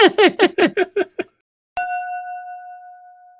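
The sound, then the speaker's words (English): A quick run of seven squeaky, descending chirps gives way to a brief silence, then a single bright clink of wine glasses of orange wine, L'Orange du Moulin from Bordeaux, touching in a toast, its clear ring fading slowly. “We'll cheers in your honor.”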